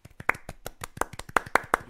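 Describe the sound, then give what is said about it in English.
A short burst of hand clapping, a few people applauding with quick, uneven claps that grow slightly louder toward the end, without any talking. “I'm going to go a bit old school here and say 50s round of applause”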